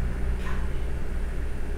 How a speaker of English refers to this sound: Can you hear that car? Yeah, you can hear that car.